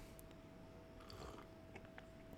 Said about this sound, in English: Wow. I'm going to take a sip.